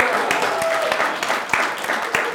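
A crowd claps steadily for a couple of seconds as a pastor comes up to join a panel, a dense patter of hands at moderate volume with a few sharper claps standing out and some murmuring mixed in.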